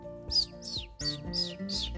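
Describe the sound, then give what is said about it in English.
A bird named Chirp, stuck high up a tree, chirps five times in quick, bright, evenly spaced bursts, clear, with a soft sustained musical tone humming underneath. “Chirp was stuck high up that tree that Miss Emma's kitty was trying to climb up”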